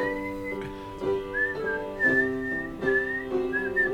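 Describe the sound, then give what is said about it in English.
Someone whistles a lively tune, the pure tone sliding between pitches over steady background sound, with short rhythmic phrases repeating throughout. “Quite the whistler. I hear the number two in the world.”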